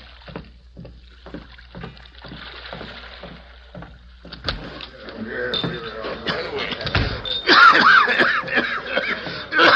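A man who has walked down a ship's gangplank to the dock coughs in harsh, dry, hacking bursts, fairly loud. The cough follows a steady rhythmic knocking like oars or footsteps on wood, with a little water and background noise.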